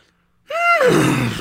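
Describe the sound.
After a brief silence, a person's voice imitates a horse's whinny: a loud, strained vocal cry that wavers, then slides down in pitch into a rough, breathy rumble.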